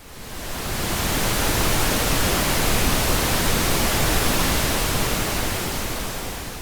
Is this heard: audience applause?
no